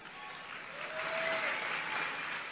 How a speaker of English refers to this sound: Okay, so to be fair, he did get a little bit of an applause towards the end of that clip there